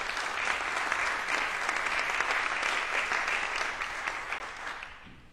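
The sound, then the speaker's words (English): An audience claps in sustained, dense applause as a hand clap of praise to the Lord, many hands clapping together at a steady, full level before it gradually thins out and fades near the end. “Let's give the Lord a hand clap of praise if you don't mind.”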